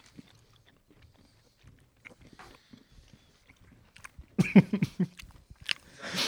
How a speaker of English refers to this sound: We should put a disclaimer in this, like if anyone hates, you know, like chewing noises.